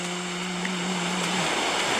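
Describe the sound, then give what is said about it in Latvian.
A steady, broad rushing wash of sea surf, continuous and fairly loud, with a low hum fading out partway through. No voices. “Tā ir jūrkas šalts, tas nav nekas, kas te šņarkst.”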